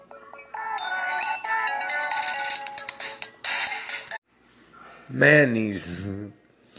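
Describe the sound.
A melodic phone ringtone from an incoming call plays for several seconds, a bright chain of stepped electronic tones, fairly loud. It cuts off, and a man's voice speaks briefly afterward.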